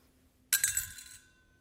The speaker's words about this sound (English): And then a poor widow comes and she has 2 copper coins, right? What must that have sounded like?